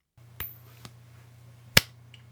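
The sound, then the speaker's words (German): A coin being flipped: a light flick and a faint tick, then a sharp, bright slap as it's caught, over a steady low hum with no talking. “Okay, ich werfe die Münze.”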